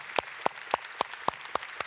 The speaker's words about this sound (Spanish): Vamos a pedir a todos los que se están graduando, por favor, pónganse de pie. Y queremos darles primeramente un fuerte aplauso por el logro de ustedes y de sus padres.